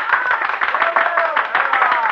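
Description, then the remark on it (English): A crowd applauds with dense, steady clapping that fills the whole moment, while a few voices rise faintly through the noise, as Maître Vidocq is introduced. “Then applause drew me from my unhappy rebel.”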